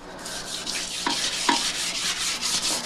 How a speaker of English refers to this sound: And scrub that toilet.